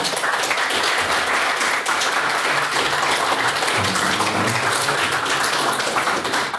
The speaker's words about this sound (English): And if you could please get one more round of applause for all of our speakers this evening.